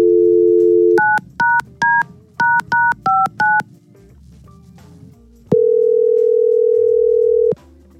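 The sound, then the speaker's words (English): A radio show phones a man: a steady dial tone gives way to a quick series of touch-tone beeps as a number is dialed, followed by a pause and then a long, single ringing tone on the line. No one speaks. “Let's try to get him on the phone.”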